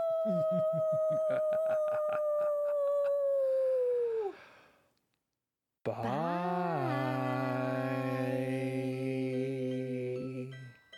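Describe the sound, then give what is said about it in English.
Two long, sustained wolf-like howls done by human voices, the first gliding slowly downward and fading, then a brief silence before a louder, layered howl rises and holds steady. “And I request that you unleash the inner wolf. Howl.”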